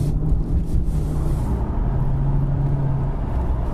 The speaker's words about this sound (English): You can probably hear them now, actually. They're just grids, because there's nowhere for the suspension to go. So in a perfect world, this car would accommodate those bumps in the way that the Jaguar XFR did. Okay, onto a roundabout.